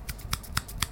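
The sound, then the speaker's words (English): Four or five quick, soft slapping snaps in an even rhythm, like one hand clapping, crisp and fairly quiet, with no voices. “I tell you, for the next 2 seconds, you get a sneak peek, and the next one hand clapping.”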